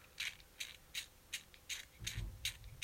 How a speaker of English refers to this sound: People don't like, mind the undulating noise. I know, I'm so sorry. He's cranking it up. I'm cranking a big lighter right now because I'm about to show him Chinese fireworks.